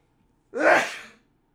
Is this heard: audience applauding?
no